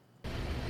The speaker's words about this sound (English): Can we shut the diesel truck off, please?